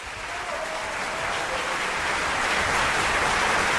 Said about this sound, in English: A little round of applause for Festivities by Jen.